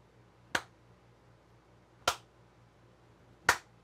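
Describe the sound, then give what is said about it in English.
Three crisp finger snaps, made to trigger an effect through the loud-sound detection of an Adafruit Circuit Playground, ring out one at a time, spaced irregularly over a few seconds, each a bright, sharp click with a quick decay over a faint low hum and no talking. “And anytime you want to use something like a snap or a clap, you can trigger an effect.”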